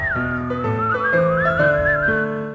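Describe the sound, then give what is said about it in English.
A bright whistled melody glides up and down over a steady instrumental backing, carrying on clearly and fairly loudly for the whole short stretch with no one speaking. “Just press your lips and whistle, that's the thing.”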